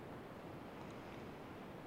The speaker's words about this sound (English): the combination of the forest bathing with the healing sounds of the ocean in the background with the yoga nidra style combined together